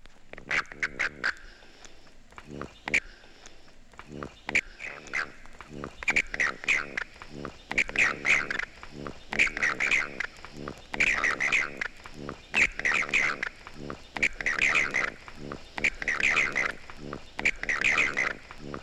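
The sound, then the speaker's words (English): A male southern toad (Bufo terrestris) gives warning chirps: a long series of short, buzzy, pulsed bursts repeating at a steady rhythm, moderately loud, with brief gaps between calls. “Both sounds can be heard in the southern toad, Bufo terrestris.”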